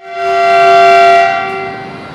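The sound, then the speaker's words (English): A train in China blares a long, steady horn, its tone holding for about two seconds over rumbling rail noise before easing off slightly as it passes. No one speaks. “And so everyone is really obsessed about the world's fastest train that we have here in China, the Revival Express, Fu Xinhao and stuff like that, the CR400 trains going at 350 km/h, that's 217 mph.”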